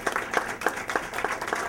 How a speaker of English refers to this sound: So let's give our panelists a round of applause. Thank you so much for being here.